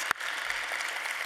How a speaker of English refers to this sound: So just if you give him a round of applause for the time he spent in our community.